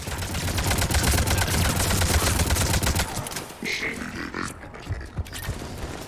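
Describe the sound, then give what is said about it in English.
Loud, rapid video game gunfire as the player shoots up spore pods, rattling continuously for about three seconds, then giving way to scattered pops, clanks and a brief high-pitched whine. “We're shooting up the spore pods, and I'm not entirely sure.”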